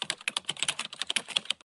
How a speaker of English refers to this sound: I'm typing hard.